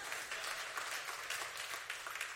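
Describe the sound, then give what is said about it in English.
An audience applauds, a dense, steady patter of many hands clapping at once, bright and crackly, holding an even level throughout with no voices over it. “Somebody wanted to clap, and you're like, I don't know if I should.”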